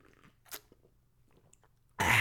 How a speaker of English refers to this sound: Quick sip of coffee. Coffee break again, boss. Don't mind me, boss.